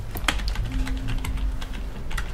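Rapid, irregular clicking of fingers typing on a computer keyboard while setting up a reservation at a winter lodge check-in, with sharp keystrokes scattered over a steady low background hum and no voices.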